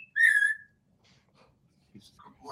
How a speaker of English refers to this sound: … is doing music with a parrot.